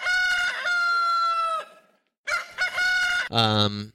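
A rooster crows loudly twice, each a long harmonic cock-a-doodle-doo, the second call ending in a higher, strained flourish. Close and clear, with a short silent gap between.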